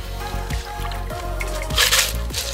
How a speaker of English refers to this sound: And then we're just gonna strain your margarita out of your shaker tin into your coupe glass. If you've got a fine mesh tea strainer, double strain it. It'll catch all those extra little ice chunks.